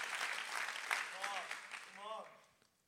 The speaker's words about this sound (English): Come on, clap and thank him. I'm not messing around no more.